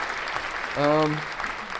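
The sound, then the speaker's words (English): Steady, dense applause fills the whole clip at an even level, with a short, sustained voiced cheer rising briefly over it near the middle. “But, you know, round of applause for progress.”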